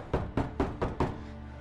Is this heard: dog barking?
no